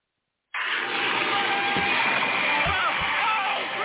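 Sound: water gushing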